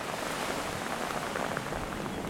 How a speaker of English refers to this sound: But the rain has started again. Definitely a good idea to have a cake and a cup of tea when the rain comes.